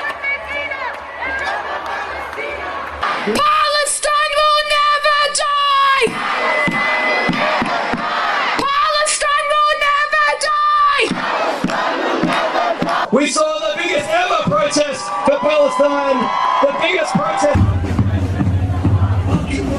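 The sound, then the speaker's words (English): A large crowd of protesters in New York City chants and shouts in unison, rhythmic bursts of many voices rising and falling in repeated phrases such as "Gaza", "Shame on you" and "Palestine will be free", loud and dense, with ragged yelling between the chants. “The NYPD says demonstrations are being held just about every day in the city and stretching police resources.”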